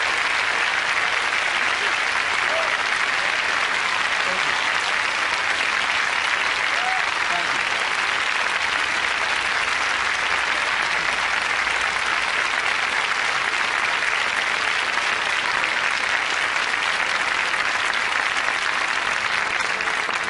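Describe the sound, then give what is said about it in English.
A large audience breaks into sustained applause for Mrs. Rosa Parks, a dense, steady wash of clapping that holds at an even loudness for about twenty seconds without letting up. “Let's give Mrs. Rosa Parks a round of applause, if you please.”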